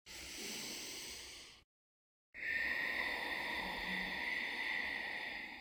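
During a breathing exercise, two slow breaths are exhaled through the nose close to the microphone, a soft steady hiss of air separated by a short silence. The second, longer breath carries a faint high whistle. No one speaks.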